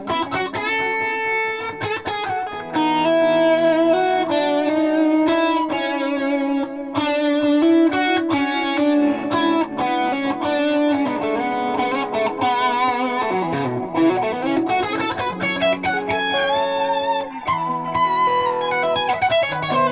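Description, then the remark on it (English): An electric guitar played through Bogner and Soldano amps with heavy distortion and some effects, strumming chords and riffs continuously at steady, moderate living-room volume in a home studio, with no voices. “It's awesome we got these amps getting some great tones at a just true like living room volume here in your home studio.”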